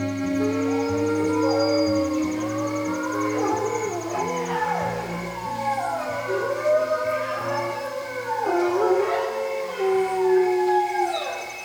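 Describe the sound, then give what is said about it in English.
A large pack of timber wolves howls together in a pine forest, long wavering calls overlapping and rising and falling, with higher yips from pups mixed in, echoing steadily with no talking. “The calls of a large pack of timber wolves and their pups echo through a pine forest.”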